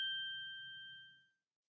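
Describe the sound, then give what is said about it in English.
A single bright clink of shot glasses in a toast rings out, its clear tone sustaining and fading over about a second beneath a faint low murmur. “Anyway, all that said, we're taking a shot because there was a hot tub where it didn't belong a week ago and we suck at keeping promises.”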